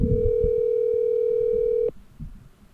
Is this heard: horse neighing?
no